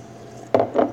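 Two glasses, one mostly emptied, knock together in a cheers toast, two quick, fairly dull clinks about a quarter second apart, heard alone over a quiet background with no talking.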